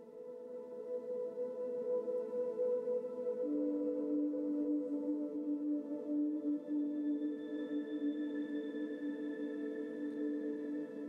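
An ambient music rework plays steadily with long sustained tones layered in a warm drone, a new low note settling in partway through and a soft high tone added later, no voices.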